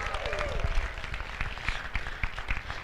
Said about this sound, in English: Can you all wave back at our superheroes this morning? Come on. Oh, my gosh. Now can you give them one of the biggest rounds of applause you've ever given anybody?